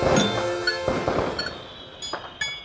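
Glasses clink together in a toast, a handful of bright taps with ringing tones that hang briefly, moderately loud, with no voices.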